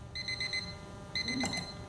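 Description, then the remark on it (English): An electronic alarm set for 6 o'clock, triggered by a button pressed inside a bag, beeps in quick, rapid pulses, two short bursts separated by a brief pause, with a soft knock partway through the second burst. No one speaks. “Your alarm was set for 6 o'clock.”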